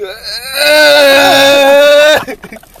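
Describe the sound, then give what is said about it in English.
A voice imitates a sleepy moan: a short wavering whine, then a loud, sustained, nasal groan held steady for about a second and a half before cutting off abruptly. “I didn't think I made noises when I slept.”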